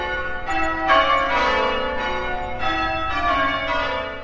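A peal of church bells rings out, several bells struck in quick succession, their overlapping tones blending into a steady, resonant clamor. The ringing is fairly loud and continuous, with no voices.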